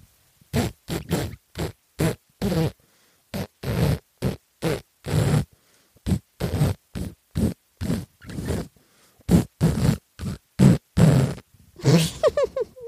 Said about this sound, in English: How do you fart happy birthday to somebody?